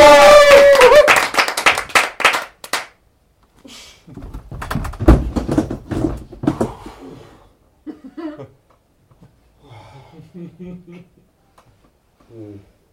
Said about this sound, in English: Give us a cheer for Sex, Lies and Improvisation!